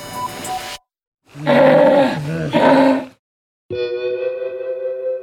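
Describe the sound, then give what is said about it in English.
A sea lion roars in loud, harsh bursts, two throaty calls back to back, then after a short pause a steadier, drawn-out groaning bellow. No one speaks. “Sea lions are usually pretty chubby because they need a thick layer of fat to keep them warm in the cold water of the ocean.”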